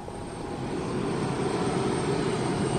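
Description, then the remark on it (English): A steady, continuous engine drone of a Russian plane headed for the North Pole: a loud low rumble with a broad hiss on top, with no voices. “But here I am, getting ready to get on a Russian plane headed for the North Pole.”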